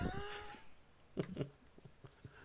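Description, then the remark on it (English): A robotic cat gives a drawn-out electronic meow, followed by a few short clicks and chirps, fairly quiet with no one talking. “I meow, therefore I am.”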